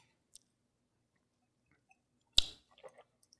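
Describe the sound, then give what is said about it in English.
A sip of whiskey: one sharp click, then a few soft, wet mouth sounds and a faint smack, with no talking. “Now here's the thing about, as I'm going to take a sip of this.”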